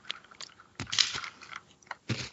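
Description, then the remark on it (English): Crunching as someone bites and chews a crisp, cracker-like biscuit stick, a few sharp brittle snaps followed by moist chewing, with no talking. “The rest of the podcast is just going to be crunching.”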